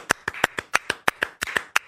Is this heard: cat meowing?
no